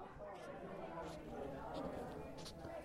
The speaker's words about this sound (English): Oh, I hear footsteps.